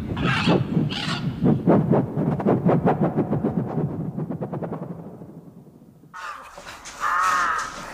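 bird, large bird cawing

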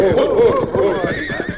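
animal, horse neighing

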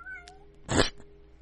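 animal, cat meowing

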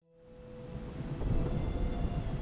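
nature, thunderstorm with torrential rain

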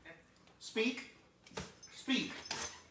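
animal, dog barking on command

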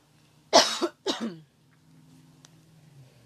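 human body sound, cough

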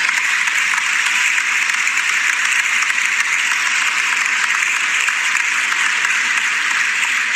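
crowd, clapping

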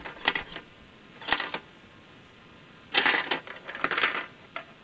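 machine, cash register

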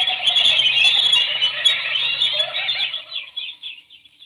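bird, birds calling

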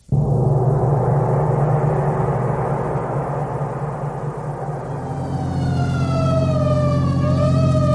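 vehicle, emergency vehicle siren wailing

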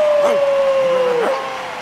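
animal, dogs barking and yipping

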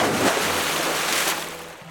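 nature, ocean waves crashing

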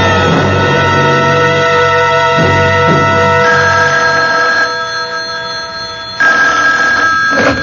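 household object, telephone ringing

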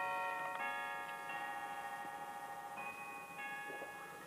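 household object, clock chiming

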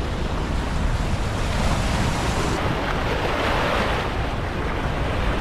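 nature, raging river water rushing

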